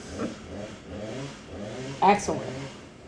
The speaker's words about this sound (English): It's not a podcast without background noise. This portion of the podcast is brought to you by Steel Chainsaw. Chainsaws. Let's cut shit up.